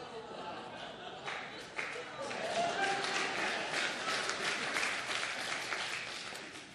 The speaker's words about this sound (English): Did you seriously clap for that? You're amazing.